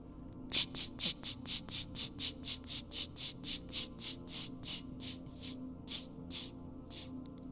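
A cicada buzzing in a steady, rhythmic series of shrill, high-pitched pulses, about three per second, fading slightly toward the end over a low background rumble. No one speaks.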